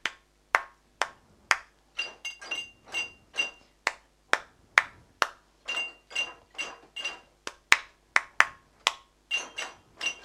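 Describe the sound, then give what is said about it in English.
A steady rhythmic pattern of sharp percussive hits: hands clap a rhythm, then the same rhythm is tapped on a table and on a glass. Some hits are dull and others bright and ringing, fairly loud, with no talking. “And now I would like you to take the same rhythm with something to do on your table, on your glass, on your table, something else like that. So I will clap it and then you will do your thing.”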